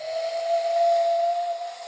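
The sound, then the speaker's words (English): A hooting bird-call whistle blown through cupped hands holds one steady, slightly wavering note for about two seconds, fairly loud, wrapped in a breathy hiss, with no talking. “I know how to do, like, these like, bird calls.”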